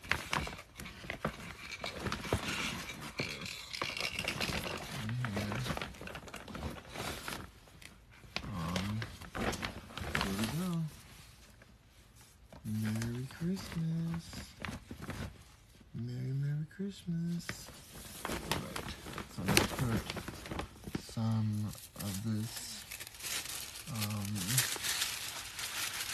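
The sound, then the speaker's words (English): Gift wrapping paper crinkles and rustles in a steady run of crisp, papery crackles as it is put on a little giraffe activity toy so it looks like a gift, while people talk intermittently over the handling. “Paper on there too, so it looks like a gift.”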